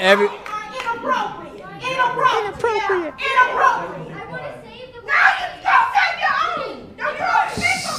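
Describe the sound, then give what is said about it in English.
A crowd of agitated voices shouts over one another at a public meeting on abortion law, after people who think abortion should be illegal are asked to stand up, loud and overlapping for the whole stretch, with raised, heated tones and barely any pause. “People shouting all mad.”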